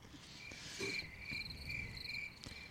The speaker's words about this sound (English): The awkward silence. Yeah, I was going to fill it. Do you have like a cricket thing? Yeah. Cricket, yeah, we can put that in there.